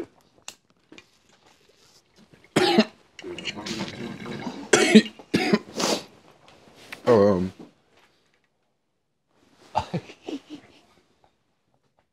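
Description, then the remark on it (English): A person coughs hard after smoking in a series of harsh, raspy bursts, with gasping and throat clearing between fits, then a few weaker coughs after a pause. “As you die coughing, I'm sorry.”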